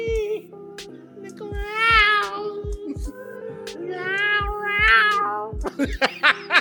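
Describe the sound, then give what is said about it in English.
Loud, drawn-out cat yowls rise and waver in two long swells, like cats squaring off in a fight, over a steady low thumping beat. “Sounded like a cat. Do you know you got a body? Yeah. Is there a cat fighting?”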